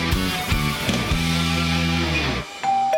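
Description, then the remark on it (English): A doorbell of a new house rings as family arrive for Sunday lunch, a loud, melodic chime of several quick notes that ring out together and cut off, followed by a couple of thin, high tones. No one speaks. “Do you hear that? That's your family coming round to your new house for Sunday lunch.”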